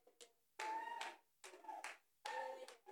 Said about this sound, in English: Who is clapping? Stop clapping. Who's the one clapping?